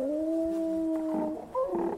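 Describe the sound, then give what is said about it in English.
A monstrous crocodile hound lets out a long, loud, low-pitched cry that holds steady, then wavers and breaks into rougher, snarling bursts toward the end, with no talking over it. “That's the sound I heard. The hound! The beast approaches.”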